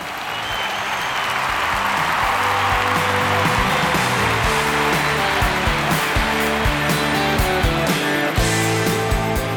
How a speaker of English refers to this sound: You call that applause? That's not applause. I think we can do better than that. Here, try this.